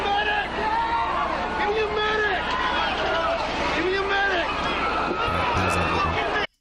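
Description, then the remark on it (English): Several voices scream and wail in anguish, people on fire in a burning nightclub screaming for help, overlapping cries rising and falling in pitch over a loud, chaotic din, with a low rumble underneath before it cuts off abruptly. “Oh yeah, those are people on fire screaming for their lives for help.”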